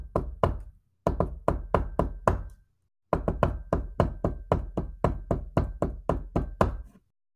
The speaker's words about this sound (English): You would also hear a noise with your earlier perception check. It sounds like almost like a knocking sound. It's somewhat rhythmic. It's like... On the other side of that door?